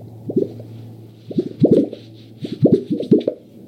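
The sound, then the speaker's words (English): Gunnison sage grouse mating display: low, hollow popping bursts in three clustered groups, with soft airy whistling above and a steady low hum underneath, no voices. “I do fear that some spring I might not hear that sound.”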